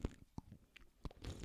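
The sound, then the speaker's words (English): Quiet slurping of a beer: a few short wet sucking bursts spaced through the moment, ending in a longer noisy slurp, with no one talking. “Oh, that's a good slurping noise.”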